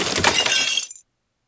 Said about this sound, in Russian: Сейчас мы расколотим этот чемодан и посмотрим, что внутри». «А разве можно трогать чужое?» Чемодан взломали.